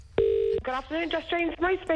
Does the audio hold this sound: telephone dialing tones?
yes